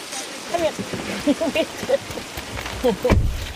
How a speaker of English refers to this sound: When the rain stopped, though, we took the opportunity and drove down there. The downpour came back as soon as we went outside.